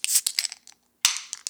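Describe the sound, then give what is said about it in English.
A beer can cracks open with a sharp metallic snap, then a bright hiss of escaping gas and fizz, followed by a second crisp pop and hiss a moment later. “Grab your can, Christopher. Grab your glass and let's open her up.”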